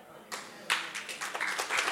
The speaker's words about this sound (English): Oh, don't clap if you don't mean that. Some of y'all, you know you don't mean that.